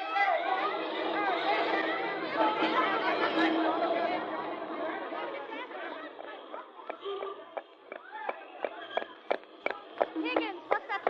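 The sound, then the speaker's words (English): A dense crowd of many voices, seemingly chasing somebody, clamors loudly, then the babble thins as quick, sharp footfalls patter past in an uneven running rhythm. “The crowd seems to be chasing somebody.”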